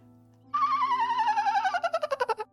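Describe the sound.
A voice imitates a dolphin: a loud, high, squealing whistle slides steadily downward for about two seconds, then breaks into a quick burst of stuttering, clicking chatter before stopping.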